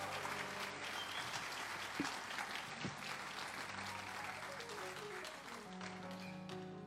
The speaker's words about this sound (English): about another round of applause? Woohoo!